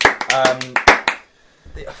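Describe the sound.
A short burst of clapping from a small group, roughly eight sharp claps in about a second, mixed with cheerful voices, then a brief quiet before someone starts speaking.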